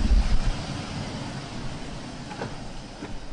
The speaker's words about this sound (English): I mean, the ocean is literally... At our feet. 30 feet away from our feet. You can probably hear it. That's not a wave machine. That's the real deal.